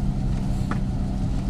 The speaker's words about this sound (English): I don't know if you can hear there, my wiper's going.